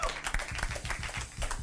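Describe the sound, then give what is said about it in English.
A church audience at a Pride service claps together in a brief, dense burst of applause, many hands slapping at once with a steady, energetic patter and no voices over it. “Come on, clap like you mean it.”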